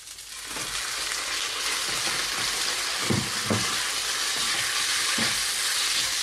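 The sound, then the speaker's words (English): Steady, bright sizzling of rice frying in a hot pan, broken by several low scraping knocks as a utensil stirs and breaks up clumps, with no voices. “Still breaking up those clumps. But we're beginning to look really good. And it's beginning to look like fried rice now, which is great.”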